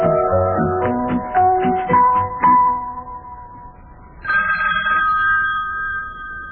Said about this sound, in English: Well, lad, telephone's ringing again. Well, boy, I'm not going to answer it.